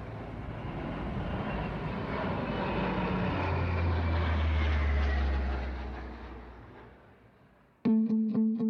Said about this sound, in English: So you can imagine at 1 or 2 o'clock in the morning, this thing flying over your house at that speed with two engines, and they got four-bladed propellers on them.